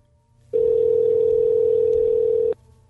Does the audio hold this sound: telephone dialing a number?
yes